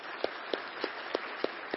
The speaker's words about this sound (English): We've got a small gift for you guys and a little certificate. I'll hand you. Can you handle that? And how about a round of applause for this family? Praise God for them.